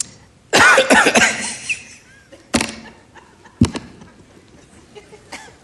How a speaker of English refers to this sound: You know how after you get the flu, it'll hang in here? And it's like if you breathe too deeply, you know you're going to cough? It's been like me for like the last week.